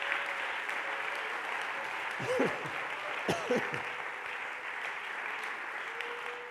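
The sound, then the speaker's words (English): A crowd claps their hands to give the Lord praise in a steady, dense wash of applause that lasts throughout, with a couple of brief rising vocal whoops breaking through midway. “Can we clap our hands and give the Lord praise?”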